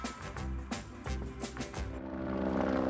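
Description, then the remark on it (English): A helicopter rotor sound effect for the Mysterious Bluffs Chopper Traffic Report thumps in a quick, steady rhythm for a couple of seconds, then settles into a continuous droning engine hum, moderately loud, with no voices. “We just got a special message in, courtesy of the Mysterious Bluffs Chopper Traffic Report.”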